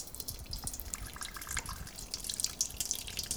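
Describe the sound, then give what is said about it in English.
128 grams of water pours steadily into a container for making a yeast dough, a continuous splashing trickle with small bright drips throughout. No one speaks. “This is going to take 128 grams of water.”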